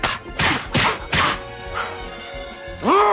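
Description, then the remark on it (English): A slapstick slap sound effect: a quick series of four sharp, loud slapping smacks in an uneven rhythm, followed by a brief rising squeaky tone at the end, no voices. “You slap me, I slap you. Did you hear something that sounded like this?”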